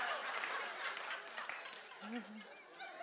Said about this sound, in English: Now you're just feeling bad for me. I don't want your pity claps.